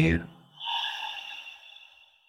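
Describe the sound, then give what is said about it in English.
A slow, soft, breathy exhale through the mouth during a guided breathing exercise, after breathing in through the nose. It lasts well over a second and gradually fades, with a brief voiced sound just before it. “So we'll do three breaths here, breathing in through the nose and out through the mouth for these.”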